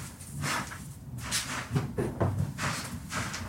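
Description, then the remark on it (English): An elevator door slides and bumps shut with a few low thuds, set against a steady rumbling hiss that carries through the whole moment. “The door closes and they ride for a beat.”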